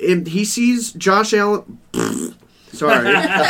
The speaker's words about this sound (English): Green farts.